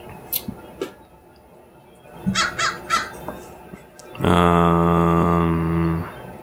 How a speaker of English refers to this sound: That sounded ominous. What, like the what? The crow in the background? Yeah, that was my crow. Sorry about that.